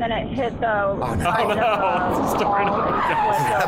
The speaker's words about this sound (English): How was she hearing her over all the car crashing in the background?